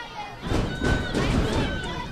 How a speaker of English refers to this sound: You hear a Let's Go Lions chant coming from the LMU faithful that are here tonight cheering on their team.